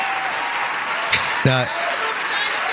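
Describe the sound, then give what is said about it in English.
Steady, dense audience applause fills the whole stretch at a fairly loud level, with a brief sharp knock and a short shout of "preach" from someone in the audience rising out of the clapping midway. “Wow, an applause for that.”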